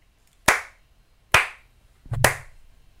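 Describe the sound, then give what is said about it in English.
Three sharp, loud hand claps hit right on the microphone, spaced roughly evenly apart with no talking; a low muffled bump comes just before the last clap. “That wasn't even that was a clap. A shitty slap.”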